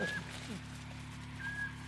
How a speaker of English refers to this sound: storm petrel recording that just keeps playing on and on and on and on